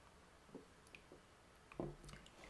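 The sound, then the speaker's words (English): Quiet, wet slurping of a smoothie through a straw: a few soft squishy sips, then a louder gurgling pull near the end, with no talking. “Sipping my smoothie.”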